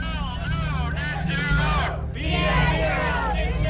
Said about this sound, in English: People are livid, screaming at city council members.